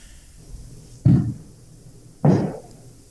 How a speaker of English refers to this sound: Sorry, everybody. Fireworks over here. Is this a little early? Isn't the 4th of July like next week? It's been like this all day.